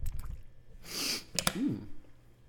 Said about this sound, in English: Hold on. I'm drinking some water. Y'all process that while I'm drinking my water.